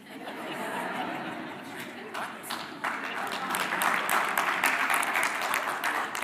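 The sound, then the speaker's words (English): Scattered applause from parents in the audience, a sustained wash of many hands clapping that builds slightly louder halfway through, with a bit of chatter and light laughter mixed in. “Only parents are clapping right now.”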